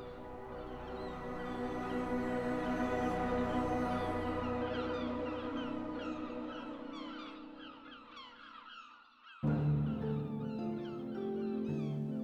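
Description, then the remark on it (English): A lone gull cries again and again in high, mewing calls, clear, over a steady background wash, as it soars away toward the horizon. The calls trail off briefly before the sound shifts near the end. “Whether that brings dread to the hearts of many makes my heart fly as vigorously as that lone gull now soars away from me and makes for the horizon.”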